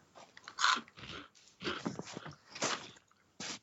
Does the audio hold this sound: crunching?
yes